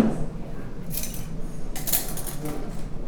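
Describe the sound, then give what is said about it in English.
A cocktail is strained from a shaker into a rocks glass, with bright bursts of ice rattling against metal and a soft pouring hiss. A faint low murmur runs underneath. “We're gonna strain this into a rocks glass, or any kind of short glass.”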